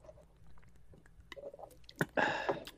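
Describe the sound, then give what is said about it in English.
Drinking ultra-pure bottled water from a flimsy bottle: soft wet mouth clicks and swallows, then a louder burst of sloshing gulps near the end. No one speaks. “Oh, that's really good water.”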